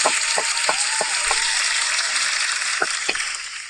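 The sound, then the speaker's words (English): A crowd claps in a steady, dense wash of applause, with a few sharper individual claps standing out early and near the end, and no voices over it. “But yeah, one more time for the applause, please.”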